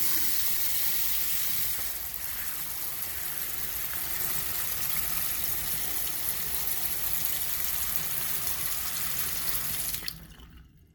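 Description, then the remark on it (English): Water runs steadily from a tap for about ten seconds, a continuous hiss with light splashing as cold water is scooped up and put on a man's face, then stops abruptly. No one speaks. “I think I'll go and put some cold water on him.”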